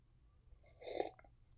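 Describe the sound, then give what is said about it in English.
A short sip of coffee: one soft slurp followed by a couple of faint swallow clicks, alone against quiet background hiss. “Had to take a sip of coffee for that one.”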